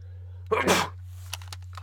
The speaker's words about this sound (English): excuse me. Sneezed so hard, my damn headphones came off. That's the spring for you.